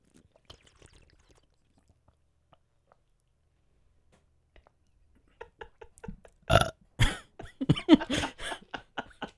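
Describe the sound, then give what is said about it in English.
A few quiet gulping, swallowing sounds as someone drinks water, then a loud, drawn-out burp with a rough, croaking texture, followed by a couple of shorter belches. “Have you ever heard me burp, by the way?”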